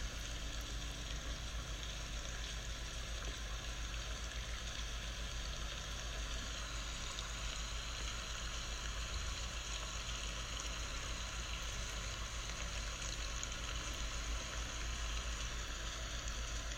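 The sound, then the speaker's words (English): Early-morning rain splatters on a window in a steady, unbroken hiss, a dense patter that holds the same level throughout with no voices or other sounds. “You hear it splatter on the window.”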